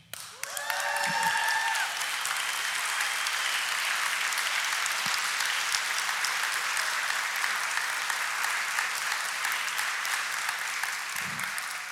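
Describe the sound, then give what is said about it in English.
Sustained applause from a large church audience after the announcement that Glad Tidings Victoria is being renamed Coastline Church, steady and loud for the whole stretch, with a brief cheer or whistle near the start. “Thanks for clapping first, by the way.”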